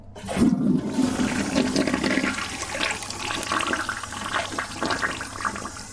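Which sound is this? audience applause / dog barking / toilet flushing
toilet flushing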